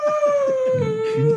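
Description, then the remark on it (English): A person lets out a long, steady wolf-style howl, a single sustained tone that slowly drops in pitch, fairly loud, with no other talking. “Don't howl. I know you were gonna do it.”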